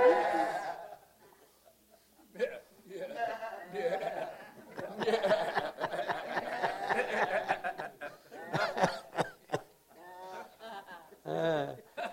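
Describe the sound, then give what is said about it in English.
Several people bleat like sheep, overlapping wavering baas in a rough chorus over about twelve seconds, with scattered laughter and chuckling mixed in, moderately loud. “He must want us to be joyful because sheep really sound funny, don't they?”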